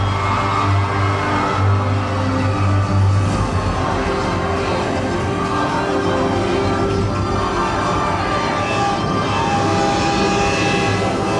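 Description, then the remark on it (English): The presidential rail car rolls in to a stop with a loud, steady mechanical rumble and a low droning hum that continues throughout, unbroken, with no voices. “The presidential rail car is departing from its first stop and should be arriving soon.”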